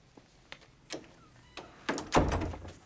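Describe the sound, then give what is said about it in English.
A door is pushed shut: a few light clicks and knocks lead up to a solid, low thud with a short rattle, and no one speaks. “Shut the door.”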